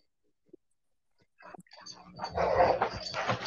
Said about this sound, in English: Freaking dogs are freaking out. His mom just got home.